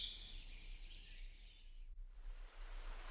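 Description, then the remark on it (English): Birds chirp and trill busily, layered calls overlapping for a couple of seconds over a soft hiss, then the song stops abruptly, leaving a steady rushing noise. “Let the music of birds inspire you to protect their habitats, ensuring the continuation of their vital songs across the skies and their important role in nature.”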